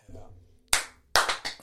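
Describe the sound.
One sharp, loud hand clap, done to clap in the start, rings out after a faint murmur of voices, followed moments later by a quick run of three or four more claps.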